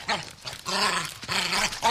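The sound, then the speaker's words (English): A cartoon dog growls and snarls in rough, throaty bursts, three loud outbursts over two seconds with brief dips between, prominent with no talking. “The crazy dog.”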